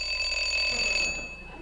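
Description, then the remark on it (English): A doorbell rings with a steady, bright electric buzzing tone, sustained for over a second before cutting off, heard clearly and alone with no voices. “I rang the bell.”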